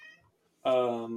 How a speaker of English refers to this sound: That's Signal. She's my cat.